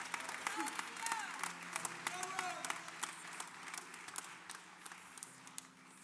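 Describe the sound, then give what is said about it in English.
A church audience gives a sustained round of applause, dense steady clapping lasting several seconds, with scattered shouts and voices rising through it before it slowly thins. “Why don't you just give him one more round of applause, man?”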